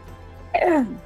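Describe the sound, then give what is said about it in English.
A person who is not sick but has a sticky throat gives a single loud throat clearing, a short harsh rasp with a falling voiced tone, preceded by a moment of quiet background noise. “The back of my throat has just been really sticky the last few weeks, so that's why you'll hear me clearing my throat.”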